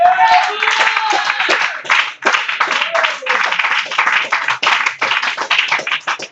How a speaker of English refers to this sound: The church can clap your hands and shout hallelujah.